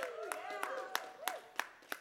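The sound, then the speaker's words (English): About seven sharp claps land in a steady, even rhythm, with voices chattering and calling out underneath, as the younger people in the audience clap along together. “All the younger people clapped.”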